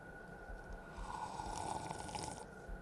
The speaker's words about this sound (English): I'm going to drink my first sip of this on mic. Okay.